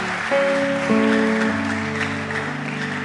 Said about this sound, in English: Hallelujah. Clap your hands together for Jesus. Wow.